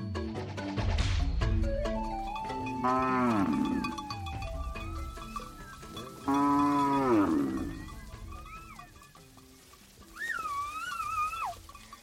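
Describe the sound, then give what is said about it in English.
Cattle moo loudly and repeatedly, long drawn-out lowing calls, while Maasai men whistle to their cattle with rising and falling tones to call them out to graze, the whistles sharpest toward the end. “The sounds of Maasai men whistling to their cattle to call them out to graze.”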